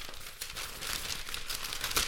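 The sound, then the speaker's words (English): Paper pages of notes being flipped and shuffled, a steady run of dry, crisp rustles and crinkles with a sharper swish near the end, heard alone with no talking. “Hang on, let me flip through my pages here.”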